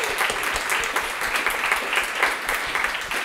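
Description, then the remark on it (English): An audience at a panel event breaks into a sustained round of applause for actor Hugh O'Connor, many hands clapping in a dense, steady wash of crackling sound with no pauses and no voices. “But why don't we give him a big round of applause and embarrass him?”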